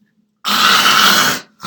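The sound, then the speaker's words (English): A single loud, raspy fart lasting about a second, with no talking, cutting off abruptly before another brief noise begins. “Yeah, what's that noise? I was farting.”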